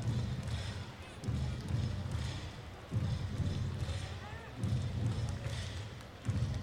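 A sellout baseball stadium crowd of 6,000 plus, at a Gateway–Washington game with the Grizzlies a strike away, stomps in a slow, steady rhythm, heavy thuds landing about every second and a half over a continuous wash of clapping and crowd noise.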